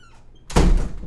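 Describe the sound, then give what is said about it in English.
A door swings open with a soft squeak, followed by a heavy thunk and a broad burst of noise as it comes to rest, heard alone without any voices. The door is opened for a Domino's pizza delivery woman. “Door's open.”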